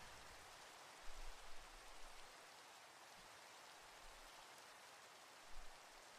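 Steady rain pours down as a dense, even hiss, with a few soft low rumbles of thunder swelling briefly underneath; no voices are heard.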